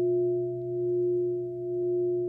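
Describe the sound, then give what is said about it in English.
A struck bell rings on, a steady low-pitched hum with a couple of higher overtones, swelling and fading gently in slow waves as it sustains, with no voices. “In the world of materiality, if I strike the bell, you hear a sound.”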